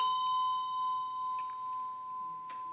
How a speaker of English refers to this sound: how am I making the sound on this bell?